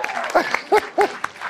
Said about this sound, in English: Okay, give a round of applause. That was a good point.